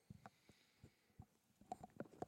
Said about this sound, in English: And, guys, excuse me once again while I take a sip of this ice-cold Pepsi Cola.